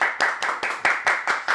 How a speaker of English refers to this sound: Round of applause in the building for that that segment of the show.